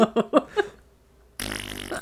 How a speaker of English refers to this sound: I'm going to fart on you now.